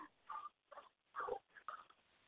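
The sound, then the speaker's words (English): Dogs bark and yip excitedly in four quick, uneven bursts, fairly faint, with no one talking over them. “Well, my dogs are freaking out, and I was on my last question.”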